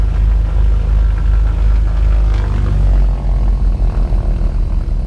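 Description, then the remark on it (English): A small propeller charter plane flying to Papua New Guinea: its engine drones loudly and steadily, a deep throbbing hum with a constant pitch that fills the whole recording, with no voices. “After our 2-day flight to Australia, we had to wait 3 days before we could take a charter plane to Papua New Guinea.”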